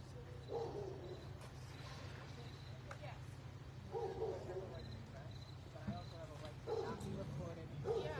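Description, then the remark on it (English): Many dogs bark around an area where an animal control officer is working, their yaps coming in scattered clusters over a steady low hum, with faint, indistinct voices in the background. “A lot of dogs barking around here.”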